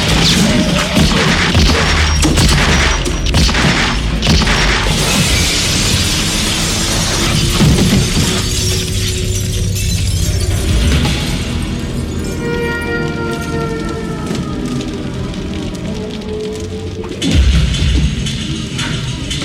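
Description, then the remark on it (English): Loud, continuous movie action sound: sharp gunshots as characters shoot each other amid crashing and crumbling debris as a building collapses, with booming impacts throughout and one more heavy hit near the end. “So they shot each other too.”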